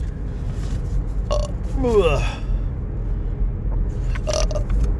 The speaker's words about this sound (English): Pardon me, I have to burp.